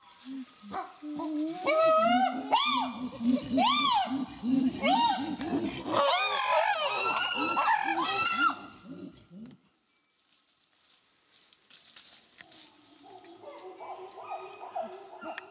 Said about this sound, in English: And so let me show you a brief clip of pant hooting from my colleague Zarin Machanda at Tufts to give you a sense of this. This is chimpanzee pant hooting taken at her field site.